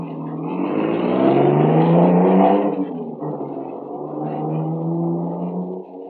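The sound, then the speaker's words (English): A car engine revs up loudly, its pitch climbing, then settles into a steady drone as the car, carrying several men, pulls away and drives off through a village, with no voices. “They all pile into the car and take off through the village, supposedly after me.”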